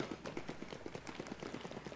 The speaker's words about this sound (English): Okay, just stomp the feet. Stop. No, keep going, keep going. Keep going. Keep going, keep going. We just made it rain. We just made it rain.